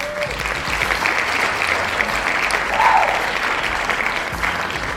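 A crowd applauds steadily, a dense wash of clapping that holds at an even, fairly loud level for several seconds, with a brief whoop of cheering rising out of it midway.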